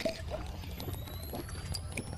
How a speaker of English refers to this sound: He's drinking water. He's testing.